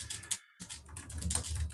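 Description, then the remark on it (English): Rapid, dense clatter of keys on a computer keyboard, fast irregular strokes with a brief pause, fairly loud with no voices. “Frantic typing”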